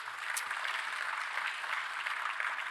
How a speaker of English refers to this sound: So I just want to say thank you. If you would give our team a big round of applause real quick.